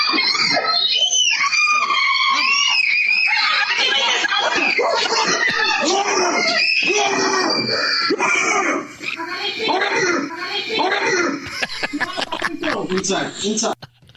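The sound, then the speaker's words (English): A man yells loudly and continuously, imitating a bigger bear to scare off a bear that got into his backyard. He makes strained, raspy, high-pitched roaring cries that run for several seconds before breaking into shorter, choppier shouts near the end. “What you're telling me is that it's time for great moments in shooing away bears history, like the guy that saw the bear get into his backyard where his wife and kids were playing and had to yell like a bigger bear to scare it off.”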